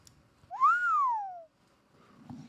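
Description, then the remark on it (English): A single breathy note, whistled by a person while inhaling, clear, rises briefly then glides steadily downward for about a second before cutting off, followed by quiet shuffling. “I can whistle on the inhale.”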